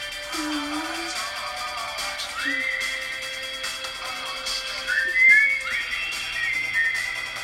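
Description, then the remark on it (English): Someone whistles in a few short, wavering phrases, the pitch sliding up and holding between brief pauses, with no talking. “I can't whistle.”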